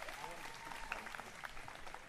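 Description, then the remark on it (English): An outdoor audience claps in a steady, dense patter of many hands, a sustained burst of applause at moderate volume lasting a couple of seconds, applauding the first audience member to ask a question. “Give him a hand clap.”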